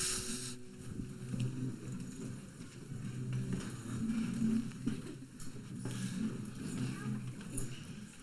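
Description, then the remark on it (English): Many chairs scrape and shuffle at once as a crowd sits down before a prayer, a continuous rough, rumbling clatter lasting several seconds with faint murmuring voices underneath. “We are going to pray, but I'll wait for all the chairs. Noisy chairs.”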